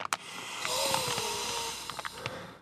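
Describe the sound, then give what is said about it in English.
Two people sniff cannabis buds of the Gelati strain, drawing long, deep, breathy inhales through the nose with a few short snorts at the start and end; no one speaks. “Well, let's both smell together. Oh yes, good idea. Let's sniffing together.”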